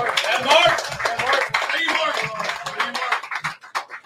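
An audience applauds in a dense, steady wash of clapping with some crowd murmur, then thins out toward the end into a few scattered, separate claps.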